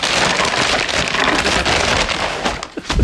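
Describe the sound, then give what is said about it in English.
Taco Bell food being dumped out of a paper bag onto a coffee table at home: a steady, dense crinkling rustle of paper lasting about three seconds, ending in a few sharper bumps and crackles, with no talking. “The Taco Bell bag is on the coffee table. I'm about to dump this out and see what I got.”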